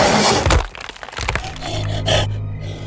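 A heavy crash as a galloping beast slams into the face of a wooden hunting blind, with loud cracking and splintering in two sharp bursts, followed by a low, lingering rumble. No one speaks.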